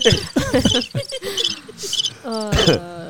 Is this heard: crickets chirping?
yes